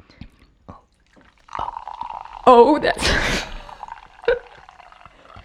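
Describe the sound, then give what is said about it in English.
A carbonated neon pink Cosmic Stardust Energy drink glugs and fizzes as it's poured into a glass, a bubbly rush lasting about a second, with a brief voice speaking before and after. “You ready to pour me up a little beverage?”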